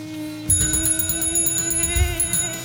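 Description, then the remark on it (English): A bell rings in a rapid series of bright strikes, each ding blending into a sustained, shimmering metallic tone that hangs on throughout, with some low rumble underneath. “bell ring. Ding, ding, ding, ding, ding, ding, ding.”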